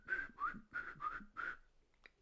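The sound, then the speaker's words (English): A person whistles a short, flute-like tune of five quick, bright notes in a bouncy rhythm, imitating a flute melody, clear, followed by a faint breathy click. “Little flute in the background.”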